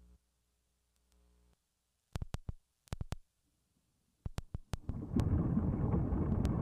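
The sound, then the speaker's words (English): Muffled underwater sound effect: a low hum, then short clusters of dull, thudding pulses, giving way to a steady, rushing wash of submerged noise. No one speaks. “That's underwater.”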